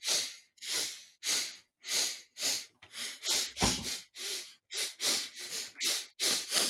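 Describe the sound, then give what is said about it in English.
A rapid series of about a dozen wet, noisy sniffles and snorts through a nose congested by allergies, fairly loud, coming in a steady rhythm with no talking. “One reason it took longer to edit this time was so much sniffling in the chapter.”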